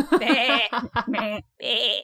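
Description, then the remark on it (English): A goat bleat, loud, with a wavering, quavering cry broken into a few bursts, then one more short bleat after a brief pause, used in place of a bleep to censor a spoken word. “I think to like the Battle of Hogwarts, where I'm not going to say it because I don't, you know, want you to have to bleep me out, Mel. But unless you want to be a goat, you can be goated out.”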